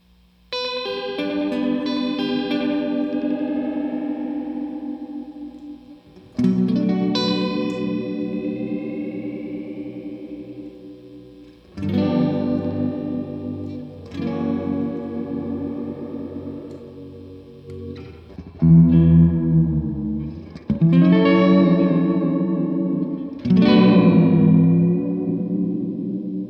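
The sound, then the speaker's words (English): An electric guitar drenched in heavy chorus and reverb, played through two amps, plays a series of sustained, swelling chords that shimmer and waver, sounding almost like a reedy organ. It is loud, with no voices. “Craziest chorus ever. I don't know what I would think that was, but pump organ would be a earlier guess than electric guitar.”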